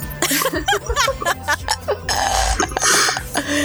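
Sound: coughing fit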